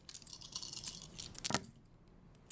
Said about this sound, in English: Roll a dice and pick a cup.